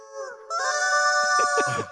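Chicken clucks and squawks form a bouncy melody over sustained, harmonic musical tones, loud and close, with short choppy bursts near the end and no talking.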